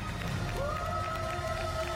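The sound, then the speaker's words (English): A crowd cheers and claps in a steady, continuous roar in a standing ovation for the new Staples logo, with a sustained whistle-like tone rising over the noise for the full two seconds. “Oh, and then they hired some actors to start cheering as well.”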